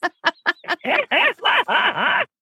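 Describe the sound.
A person's voice imitates a horse: four short, clipped bursts followed by a longer, loud, rattling whinny that wavers up and down in pulses before stopping abruptly. No other talking.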